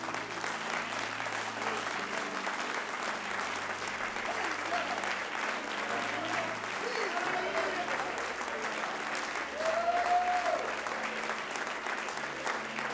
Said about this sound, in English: If you would, put your Bibles down, and let's give the Lord a great big hand clap right now.